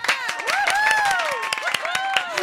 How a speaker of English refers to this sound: We waited. We went to clap, but then you were like, no, hang on.